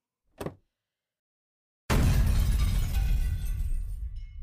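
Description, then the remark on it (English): A short sharp click as a detonator button is pressed, a second and a half of silence, then a sudden massive explosion of C4 charges buried along the perimeter of Camp Kiwi and the bird, roaring on with deep rumbling and crackling debris, slowly easing but still loud at the end. “The C4 buried along the perimeter of Camp Kiwi and the bird ruptures and bursts, activating the fault lines deep under the earth.”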